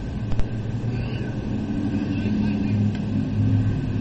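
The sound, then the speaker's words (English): A truck's deep engine rumble rolls along a street beside a baseball game, steady, swelling slightly toward the end, with a couple of brief sharp clicks early on. “Watch out, truck.”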